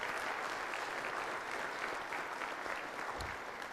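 A crowd applauds steadily, a dense wash of many hands clapping at an even, fairly loud level for the whole stretch, with no voices standing out.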